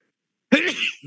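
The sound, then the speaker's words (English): A single sudden sneeze bursts out of silence, loud, with a breathy, noisy rush that fades into a short, soft exhale at the end. “Bless you.”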